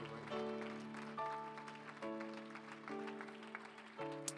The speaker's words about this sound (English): Would someone clap your hands one more time in Jesus' name?